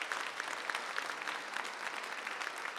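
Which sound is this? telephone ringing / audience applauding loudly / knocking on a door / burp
audience applauding loudly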